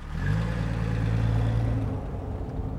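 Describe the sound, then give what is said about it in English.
A taxicab's engine revs up and pulls away through snow-covered streets at night, its low humming drone climbing slightly in pitch before easing off into a steady rumble. No one speaks. “The taxicab plowed through the snow-covered streets and eventually came to a screeching halt in front of Rango's brother's house.”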